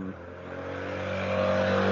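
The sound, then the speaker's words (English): A leaf blower being used right outside a window runs with a steady, buzzing motor drone and a low humming pitch, growing slightly louder over two seconds. No one speaks. “sorry, there's somebody using a leaf blower right outside my window.”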